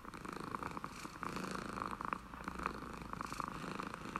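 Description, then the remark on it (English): A cat purrs steadily and continuously, a deep, contented, low rumbling hum with a gentle pulsing rhythm, fairly quiet, with no voices or other sounds. “All she could hear was the cat's deep, contented purr.”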